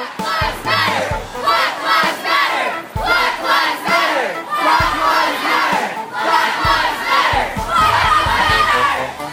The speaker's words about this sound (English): people came literally out of nowhere and took over Broadway and Times Square. The mind-blowing large crowd forced cars to make way for them on the street while they marched and chanted their emotions to the Trump Tower on Fifth Avenue.